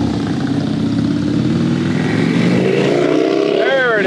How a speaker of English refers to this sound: Quarter mile is officially open. Yeah. I like how the mechanics bike's not quite as loud. No, but the Honda Shadow is pretty cool, though, that the other guy's riding.